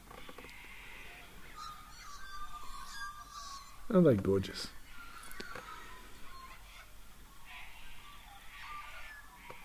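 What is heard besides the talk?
birds chirping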